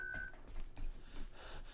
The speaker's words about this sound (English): The beep is perfectly clear inside the soundproofing, and outside the soundproofing it's audible as well